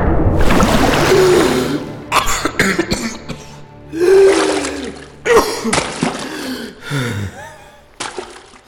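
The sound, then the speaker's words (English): A person surges up out of water with a loud splash, then gasps and coughs for breath in several ragged bursts, with water sloshing around between the heaving breaths. “Several flashes of light blind Aiden before he is once again brought back to reality and he emerges from the water.”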